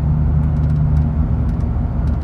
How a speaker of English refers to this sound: It's me in my truck on my way to work.